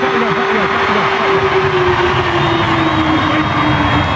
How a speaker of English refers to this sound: Can't do it though. There goes the siren.